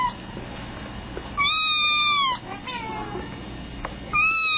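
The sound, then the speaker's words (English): A kitten in a video meows in high, wavering cries: one long drawn-out mew, a short pause, then another starting at the end, clear over a faint background hiss. “No, I'll play another kitten video while we're waiting.”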